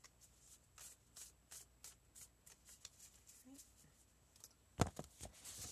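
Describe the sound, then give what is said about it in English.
Tarot cards being shuffled for a reading, a rapid series of soft papery riffles and slides repeating over several seconds, ending with a sharper snap of cards being squared together. “Shuffle these bad boys.”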